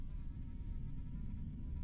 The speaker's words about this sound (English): Buzz Buzz, the giant fly.